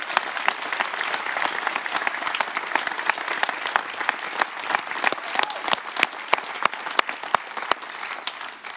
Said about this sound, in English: Two services in a row that clapped. We're off to a good start. Just one more to go.